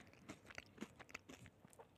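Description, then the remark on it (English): Crunching of Fritos corn chips with bean dip being chewed, a steady run of sharp, crackly bites and munches repeating every fraction of a second, with no talking. “Can you hear that? I hear it, absolutely. The crunching, absolutely.”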